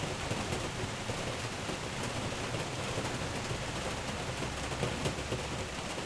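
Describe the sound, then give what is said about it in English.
Steady storm rain pours down in a dense, continuous hiss with a low rumbling undertone, holding an even level throughout with no voices. “So I guess I'll listen to the storm.”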